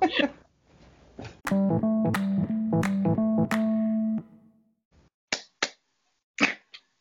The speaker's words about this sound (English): Clap on. Clap on. Clap on. Clap on. The clap. There's our intro.